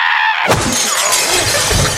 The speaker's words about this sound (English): You just destroyed my food. I had it all done. Now it's all over the floor. Oh, I see it on the floor. It looks really disgusting.